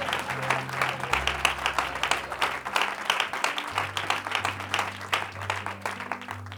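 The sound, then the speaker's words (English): An audience applauds steadily for several seconds, a dense wash of many hands clapping to welcome a guest preacher to the pulpit at Bendale in the evening, with deep sustained organ or bass notes humming underneath. “Let's give him a good Bendale welcome to this pulpit again tonight.”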